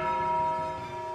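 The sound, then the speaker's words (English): A single tolling bell sound effect for the 'toll the dead' spell cast by a character in a role-playing game rings out with a loud, sustained metallic strike, its steady harmonic tones ringing evenly and slowly fading over about a second, with no voices. “Yeah, I'm going to peer over Mal's shoulder and toll the dead.”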